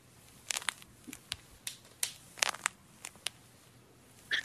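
Knee joints crunching and popping as a person stands up: a quiet, irregular series of about a dozen sharp clicks and crackles, some in quick clusters, with no voices.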